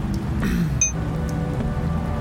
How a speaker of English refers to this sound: Great. More rain.